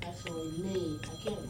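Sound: mobile phone ringing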